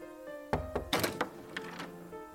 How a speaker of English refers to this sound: You know, at this point, why do you even bother knocking?